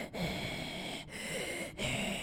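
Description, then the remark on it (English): A voice imitates a group of walruses breathing heavily in unison while giving chase: long, raspy rushes of air repeated in a steady, march-like rhythm with brief pauses between, fairly loud. “They're all kind of breathing in unison, like it's a march rhythm or something like”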